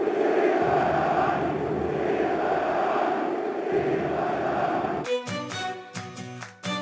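A large crowd of Baník Ostrava football fans loudly chants "my chceme Baník" in unison for about five seconds at a Fortuna liga match against Karviná, a dense roar of voices, before it cuts abruptly into a short burst of music.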